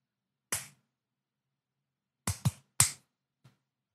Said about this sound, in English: We're going to just do a quick little clap and then I'm going to sync everything.